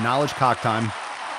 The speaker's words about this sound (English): Round of applause.